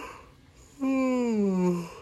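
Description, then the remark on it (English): A person performs a drawn-out yawn: a breathy inhale, then a loud voiced 'aaah' that slides downward in pitch for about a second before trailing off, alone. “And Amy started to yawn.”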